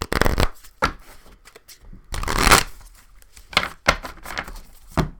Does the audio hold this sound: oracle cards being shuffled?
yes